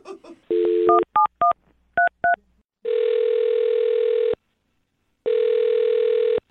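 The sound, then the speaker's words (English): Telephone dialing and ringing as a phone call is placed on the Brook and Jubal in the Morning show: a brief tone, then five quick keypad beeps, followed by two long, loud ringback tones separated by a pause of silence, with no talking. “All right, catnip, are you ready to make the phone call?”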